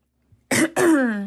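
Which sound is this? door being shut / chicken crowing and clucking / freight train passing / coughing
coughing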